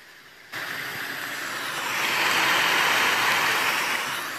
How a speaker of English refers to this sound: I'm just enjoying the sound of rain. I just want you to hear it in the background.